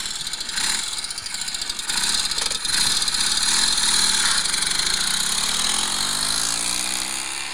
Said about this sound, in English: Well, that's a vertical twin. I know that. I reckon that's a Bonneville. So close. What is it? It's a Norton 850 Commando, a motorcycle you once owned.